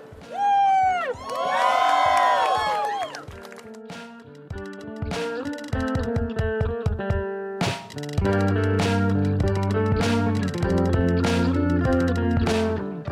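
A crowd at an Indigenous People's Day rally cheers and shouts, with high whoops and yells at the start, then rhythmic clapping or beats and sustained voices continuing loudly throughout.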